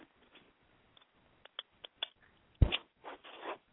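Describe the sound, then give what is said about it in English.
A deck of daily guidance angel oracle cards being cleared and shuffled before a reading: several light ticking taps, then a sharp slap followed by two short papery riffling bursts of shuffling, with no voices. “So what I do is I clear the deck and I shuffle the cards and I ask for divine guidance that the reading be clear and safe from all lower entities and energies.”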